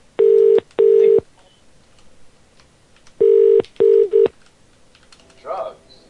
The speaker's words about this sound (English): I liked part of the show where the phones ring.